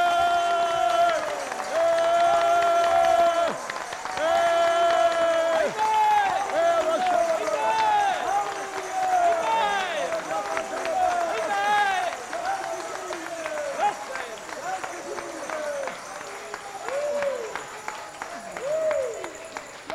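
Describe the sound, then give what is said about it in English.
A large audience claps for Jesus steadily while many voices cheer and shout in rising, wavering tones, a loud, sustained crowd roar lasting the whole time. “Now come on, all those who are listening to the tape and all those who are here, let us give Jesus a clap and send it the world wide. Everybody clap for Jesus.”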